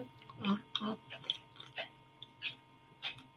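A few quick sipping and swallowing sounds, soft wet slurps and breaths in short irregular bursts, fairly quiet with no talking over them.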